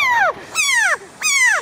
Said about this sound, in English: The frog will also give its alarm call if something grabs it. Let's listen to it again.